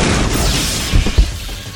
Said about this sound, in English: Lightning bolt!